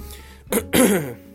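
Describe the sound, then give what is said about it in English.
A short cough followed by a longer, raspy throat clearing, both fairly loud, with no talking. “Hold on, I have to cough.”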